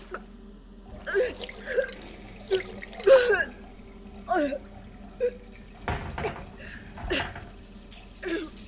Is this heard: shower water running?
yes